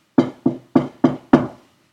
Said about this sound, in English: Knock on it?